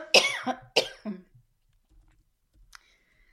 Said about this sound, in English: One second, I have to cough. Oh, okay.